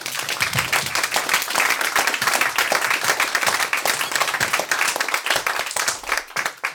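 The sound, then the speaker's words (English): An audience bursts into sustained, dense applause, many hands clapping at once in a loud, steady wash that carries on for several seconds before thinning slightly at the end. “Well, let's have a big round of applause for willfulness then.”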